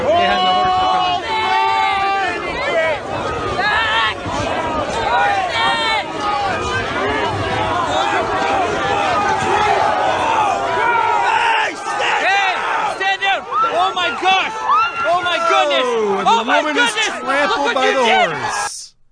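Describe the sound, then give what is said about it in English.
A protest crowd in Canada yells and screams as police horses charge: loud, continuous overlapping shouts and high cries for nearly twenty seconds, with no distinct hoofbeats standing out. “Here comes the horses.”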